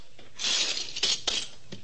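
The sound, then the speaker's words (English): A couple of attendants sweep up the broken fragments of a glass display case at the Wentworth Museum, with a gritty, hissing scrape and a few sharp tinkling clinks as shards slide and tap together, heard alone without voices. “I stood alongside Clifford Beamish, curator of the Wentworth Museum, watched while a couple of attendants swept up the fragments of a glass display case.”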